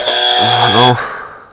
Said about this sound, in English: Buzzer question. It's a buzzer. This will be a buzzer.